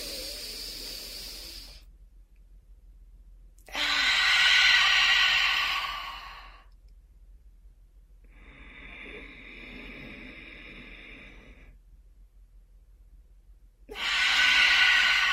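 Slow, deep breaths drawn in through the nose as a deep-breathing exercise, airy, alternating with softer exhales in a steady cycle of about four breaths with brief silent pauses between.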